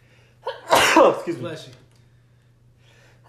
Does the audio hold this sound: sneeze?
yes